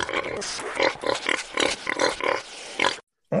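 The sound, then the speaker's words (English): A pig grunts and oinks repeatedly in a quick, steady series of loud snorts, then falls silent briefly before one more grunt starts. “Oink, oink.”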